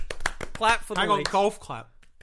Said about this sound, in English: Clap for the leaks. Golf clap. Well done, leaks. Well done, leaks.